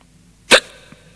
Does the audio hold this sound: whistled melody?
no